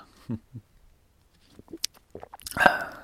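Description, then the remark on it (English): Someone drinks water: a couple of soft gulps, a pause, a few small wet mouth clicks, then a louder, splashy slurp near the end. “Yummy water. Should probably put some flavoring in that.”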